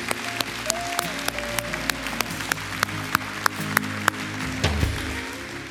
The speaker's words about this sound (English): Let's give the Lord a hand clap of praise for what he's doing in the hearts and lives of people.